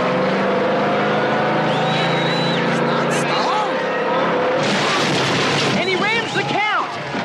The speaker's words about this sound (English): No, wait. Fonzie starts his car.